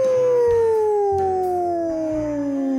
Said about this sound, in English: Hey, look, Horace. The Wolf. Ow, ow, ow.